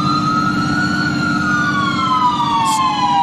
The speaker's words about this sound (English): The sound of sirens